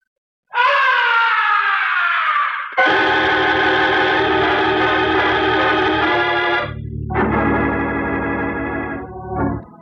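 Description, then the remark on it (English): A loud, piercing, blood-curdling scream rings out in long sustained bursts from high above the stage of an opera house, echoing with a reverberant, effects-laden quality over a low rumbling drone, with no talking. “From way up in the heights of the stage, the opera house was pierced with a blood-curdling scream.”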